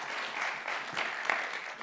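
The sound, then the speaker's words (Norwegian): An audience claps together in a steady, dense wash of applause that holds at an even level for a couple of seconds, with no voices over it. “Ska vi ge Thomas en applaus, han sitter och hjälper mig upp i buare.”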